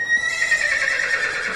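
A horse neighs in one long, high whinny with a wavering, quavering pitch that holds steady before trailing off, loud and alone without any talking.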